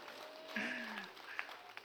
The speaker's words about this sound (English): Yeah, if you're excited, you can clap.